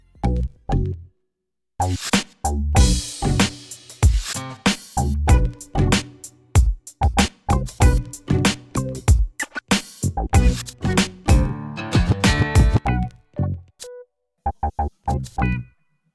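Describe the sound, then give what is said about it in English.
A short instrumental intro jingle plays alone for about sixteen seconds, busy and rhythmic with punchy, bright hits, then thins out to a few sparse closing notes. No one speaks over it. “Roll that jingle.”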